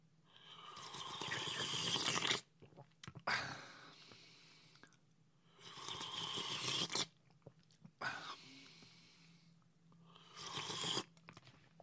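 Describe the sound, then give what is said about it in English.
Crunching and chewing of people eating pizza, in four or five loud bursts separated by brief quieter pauses, with no talking. “ASMR combined with mukbang is going to be a thing.”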